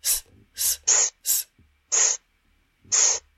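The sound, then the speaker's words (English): A voice makes the hissing "sss" letter sound of Alphablock S six times in short bursts, bright and airy, alternating between higher and slightly lower hisses with brief gaps, with no other talking. “Let's hear Alphablock S's sound again. Join in with her special letter sound.”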